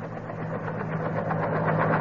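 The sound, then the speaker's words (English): A helicopter about to land on a front lawn drones steadily, a loud continuous mechanical rumble with a low hum and a faint rhythmic pulsing running through it, with no voices. “Listen. Helicopter.”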